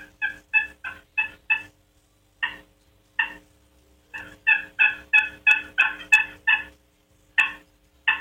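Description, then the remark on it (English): Soft hen turkey yelps made on a box call, imitating how hens yelp and communicate, in short rhythmic bursts of four to seven notes separated by brief pauses, clear with no talking. “That's the way hens yelp and communicate.”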